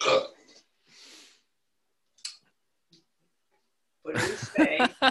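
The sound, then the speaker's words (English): A short burp opens, followed by a breathy rush of air and a couple of faint clicks in near silence, before voices start talking. “What do we say when we burp?”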